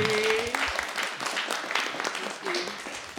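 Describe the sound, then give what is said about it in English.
A crowd applauds steadily throughout, a dense, crackling wash of many hands clapping at an even level, with a brief voice-like tone rising over it at the start. “Would you like to join me in giving a round of applause?”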